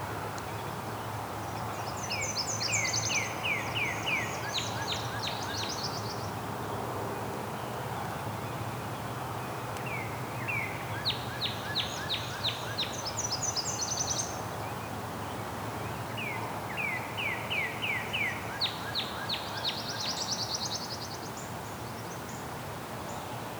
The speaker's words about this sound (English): There's our pine warbler again.